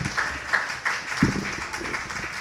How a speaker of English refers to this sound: All right, that was awesome. Give her a big round of applause, guys. Heck yeah.